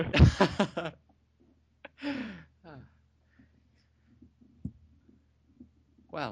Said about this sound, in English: Well, that's a yawn, but oh god.